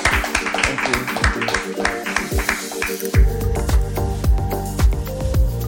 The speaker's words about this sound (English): But can we, I know there's a small crowd, but if we can give them a big round of applause.